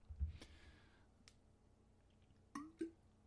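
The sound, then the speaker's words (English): A person drinks water: a few quiet, wet gulps and swallows with small mouth clicks, spread over a few seconds with no talking. “Taking a drink of water before we talk about Wave.”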